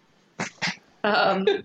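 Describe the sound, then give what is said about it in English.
A male dog lets out two quick huffing snorts, then a longer, high, whiny yelp with a short squeal after it, sounding eager and worked up. “sorry, we're laughing at the dog because he's being crazy.”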